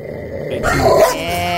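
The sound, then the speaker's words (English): A person imitates a big dog, letting out a loud, deep growling bark that swells after a brief quiet lead-in and holds for about a second. “That actually does sound like a big dog.”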